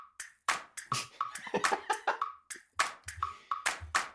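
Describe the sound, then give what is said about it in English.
An email alert sound effect plays alone: a quick, uneven run of sharp, bright bursts over a faint steady mid-pitched tone, repeating for about four seconds. “Sound effect when we get an email.”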